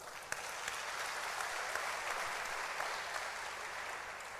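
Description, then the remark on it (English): Steady applause from a church audience for a woman: many hands clapping at once in a dense, even wash of sharp claps that holds its level for the whole few seconds, with no voices over it. “Clap for her.”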